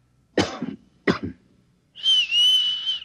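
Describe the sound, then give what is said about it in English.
Two sharp coughs in quick succession given as a signal, answered by a steady, clear whistled tone lasting about a second, fairly loud with no talking. “Look, I'll cough twice, like this. And you whistle back.”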